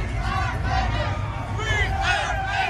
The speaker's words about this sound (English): Hundreds lined up outside the D Hotel and Casino. And when the clock struck 12:01 a.m., there were virtual fireworks and cheers. The crowd chanting, "We love Vegas."